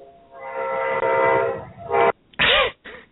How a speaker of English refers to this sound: we have a train that runs right next to the building